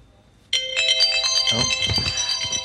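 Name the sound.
telephone ringing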